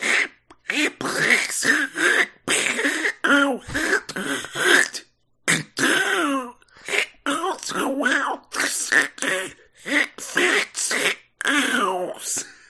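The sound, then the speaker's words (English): A person imitates Donald Duck's voice in a long stretch of raspy, quacking, sputtering babble. It comes in rapid garbled bursts broken by short pauses, loud and buzzy throughout. “This is Wish Us Duck, the segment where I try to do a Donald Duck voice, and you also try to do a Donald Duck voice.”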